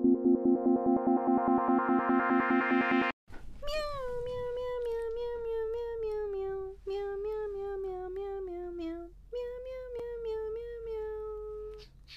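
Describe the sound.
A brief rhythmic pulsing intro gives way to a series of long, loud cat meows performed as a rendition of a song, their pitch bending and wavering in a sing-song pattern like a musical tune.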